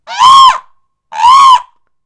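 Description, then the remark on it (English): A person imitates a peacock's call: two loud, high, nasal wails, each about half a second long and slightly arching in pitch, separated by a brief pause. “And I'm going to make the sound of a peacock for you.”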